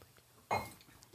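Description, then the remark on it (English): A single bright clink of glasses touching in a toast, ringing briefly and fading within a fraction of a second, against quiet background noise. “Cheers, everybody. Cheers to you.”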